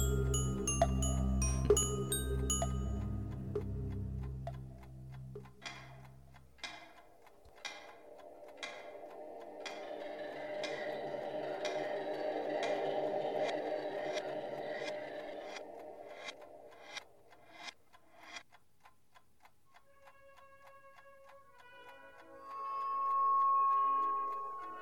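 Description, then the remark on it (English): A clock ticks steadily, about once per second, its crisp ticks sounding over a low eerie drone after a brief musical opening, then fading toward a soft tonal swell at the end. “Sir, the clock isn't for sale.”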